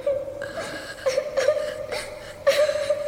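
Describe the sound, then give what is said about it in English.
A child crying in a thin, high, wavering whimper, with a few sobbing swells rising and falling over a few seconds. It is moderately soft and there is no talking. “Someone crying. A child crying.”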